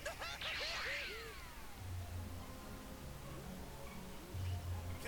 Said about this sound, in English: So he just slapped him. He made him upset.